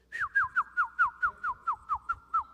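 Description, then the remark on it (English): A person whistles an imitation of the birds heard outside in the morning: about ten quick, clear chirps, each sliding downward in pitch, repeated in a steady even rhythm at moderate loudness with no talking. “Same birds that was always there.”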